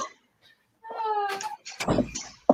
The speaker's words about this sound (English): I have to shut my door. Keeps blowing open peculiarly, but I have 8 people in my house because the kids are home. So hold on 1 second. Sorry, my door.